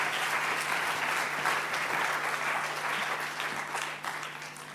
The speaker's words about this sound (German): Geben wir doch einen riesen Applaus für Silvana. Danke.